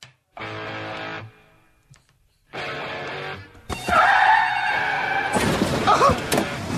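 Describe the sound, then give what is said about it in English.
A staged car crash sound effect introducing the Car Wreck of the Day segment: two sustained squealing tones, then a loud metallic impact with ringing debris, followed by a burst of shattering glass tinkling down. No one speaks. “Car wreck of the day. Let's get to that.”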